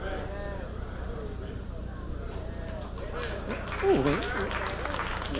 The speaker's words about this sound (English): Hey, you don't have to clap. That just made a whole lot of sense.